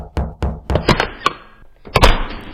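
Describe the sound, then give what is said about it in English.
A series of solid knocks on a door, about six in an uneven rhythm, then a short pause and two more firm raps, fairly loud with no one speaking. “You knock on the door and a woman answers.”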